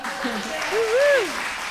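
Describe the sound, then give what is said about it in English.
An audience claps in a steady, dense wash of applause, with a single voice whooping in a rising and falling cheer partway through. “yeah, go ahead and clap for him.”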